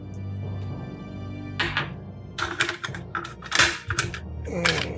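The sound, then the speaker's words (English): Rubber duck dice clatter across a hard tabletop in several quick rattling bursts, each a short flurry of sharp clicks and knocks, over a low steady hum with no talking. “Come on, rubber duck dice, what are you doing?”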